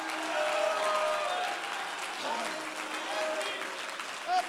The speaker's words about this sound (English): Oh, somebody clap your hands, all ye people, and shout unto God with a voice.